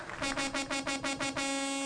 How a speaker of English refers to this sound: Is that a train horn? Huh? Is that a train horn? This is a truck horn.